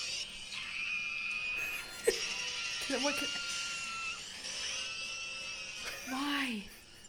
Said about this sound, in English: Why? It just screams. Because his mouth is open all the time, I guess? How do you feel about Victory Bell now that you've known that it screams in agony every time it's released in the anime?